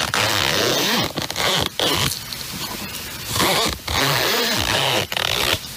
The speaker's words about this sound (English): But there's an additional caveat to this, and that is the fact that you have to identify what the zipper is on. We all know it's a zipper, but what is it on? What does it belong to?